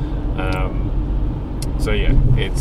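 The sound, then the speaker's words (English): A steady low rumble of road noise fills a car interior during a recording made in the car, constant and fairly loud, with a few brief higher-pitched sounds from other drivers breaking through over the drone. “We record it in the car.”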